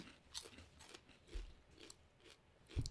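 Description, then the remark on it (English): Crunching of a crisp potato snack, several sharp bites and chews in an uneven rhythm, fairly quiet overall with brief louder crackles and no talking. “But these have a good crunch factor. These have a good crunch, yeah.”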